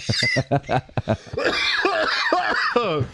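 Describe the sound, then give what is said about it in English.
A loud coughing fit: a rapid string of harsh coughs that runs into strained, wheezing gasps and choked vocal sounds as the person struggles to catch their breath. “Well, I almost passed out on that cough.”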